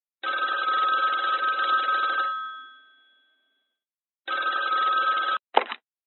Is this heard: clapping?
no